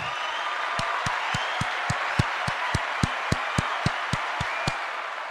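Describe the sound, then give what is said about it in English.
Steady, evenly spaced hand claps, roughly a dozen and a half sharp smacks at a brisk rhythm, ring out over a continuous bed of hissy crowd noise. “Matter of fact, this round of applause for you.”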